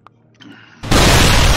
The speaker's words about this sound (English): You hear a shattering sound as...